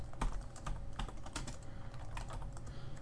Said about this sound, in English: I wasn't sure if you were typing or not, because I was typing at the same time and I heard it loud and clear.